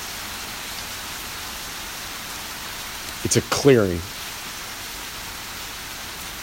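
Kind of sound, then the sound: nature, rain falling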